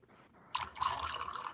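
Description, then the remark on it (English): Sprite soda pours into a glass after a brief quiet moment, a steady splashing stream with a bright, fizzy hiss that continues to the end. No one speaks. “And then you have the Sprite.”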